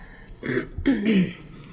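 Two short coughs in quick succession, the second slightly longer and rougher, from someone clearing a little tickle in the throat, with no talking around them.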